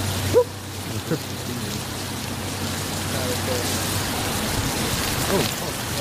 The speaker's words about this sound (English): Also, the camera's getting really wet. Yeah? Do you guys want to wait like 10 minutes in the car to see if it stops raining?